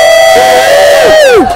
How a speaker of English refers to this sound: The crowd goes wild.